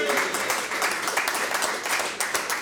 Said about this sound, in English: Big round of applause. Well done.